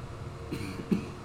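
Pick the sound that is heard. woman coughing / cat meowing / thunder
woman coughing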